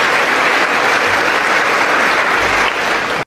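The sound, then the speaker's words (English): Loud, sustained applause in the House chamber, shown on C-SPAN, with members on both the right and the left standing up and clapping: a dense steady wash of many hands clapping at once with no pauses, filling the whole clip before cutting off abruptly. “See, C-SPAN zoomed out and showed the entire House, and not only the right and the left, they all stood up and clapped.”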